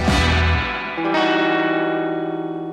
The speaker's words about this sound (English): I sure hope I'm not glitching as badly as our opening video bed did today. That was kind of strange.